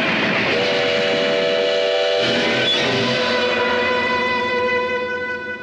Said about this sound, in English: Train. I don't want to get back on that.